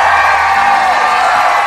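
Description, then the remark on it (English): A large rally crowd, with people lined all the way up the road, cheers and whoops in a continuous, loud roar of voices, dense and sustained throughout, with no single speaker standing out. “crowd, what a crowd.”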